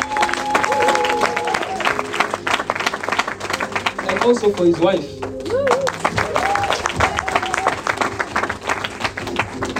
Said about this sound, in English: can you please clap for our brother